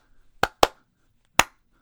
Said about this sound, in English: I clap for you.